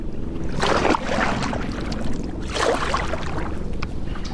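Water swishes and splashes in two broad surges as a paddle dips and pulls, over a steady low rumble of flowing water and faint wind. No one speaks.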